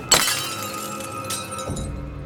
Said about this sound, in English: The glass slipped out of his hand. It shattered on the floor.